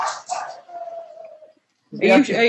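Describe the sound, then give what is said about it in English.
Two quick barks from goblin dogs, then a thin whining tone that fades out. After a short silence, a louder burst of harsh barking and yelping follows. “And sounds like the goblin dogs are coming.”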